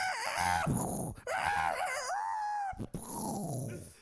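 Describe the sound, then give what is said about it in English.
Roosters crow loudly, three long harsh wavering calls in quick succession with only brief pauses between them, and no talking. “I just hear, like, if you're not here, you can't hear it, but there's roosters going.”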